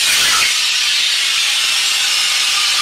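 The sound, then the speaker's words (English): A loud, steady hiss of a very heavy gas being inhaled, bright and airy with no pauses, a bit fuller in the first half second and then holding evenly to the end, with no voices. “So I'm going to take some of it and inhale it, okay? Once I inhale it, this is a very heavy gas.”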